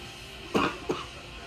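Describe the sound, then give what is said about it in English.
Two quick coughs, one sharp burst followed by a shorter second, against a quiet background with no talking. “It's making me cough.”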